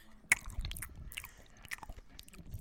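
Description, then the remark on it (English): Wet chewing of chocolate right up against the microphone, with a sharp bite at the start followed by steady smacking and squishing mouth sounds, no talking. “You chew with your mouth closed when you do it. Ew, stop. I got some chocolate on the mic.”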